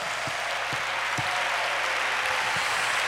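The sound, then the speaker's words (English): A church audience claps continuously to give the Lord a hand clap during a sermon: a dense, steady wash of many hands applauding at once, with a few stronger low thumps cutting through every half second or so. “And everybody give the Lord a hand clap.”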